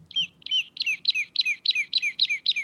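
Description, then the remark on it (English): A toy for an infant plays a quick run of bright, repeated bird tweets, about nine chirps in a steady rhythm, fairly loud, with no talking. “Tweeting. That's a toy for my infant child.”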